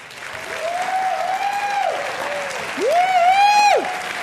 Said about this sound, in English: Okay, that is the, everybody's standing up clapping.